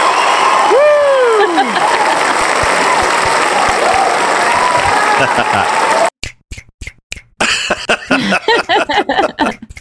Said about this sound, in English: I'm trying to find applause.